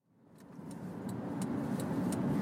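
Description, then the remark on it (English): A steady low rumble of a car in motion, heard from inside the cabin while driving to work, swelling gradually in loudness, with faint regular ticking clicks layered over the road and engine drone. “You recorded this in the car driving to work.”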